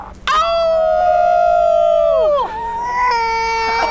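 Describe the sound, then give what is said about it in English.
A loud wolf-like howl: one long sustained wail that slides down in pitch near the end, then a second wavering cry starts right after, with no talking. “There's at least one fan who does not like that name, especially if it's going to involve a lot of howling in the stadium.”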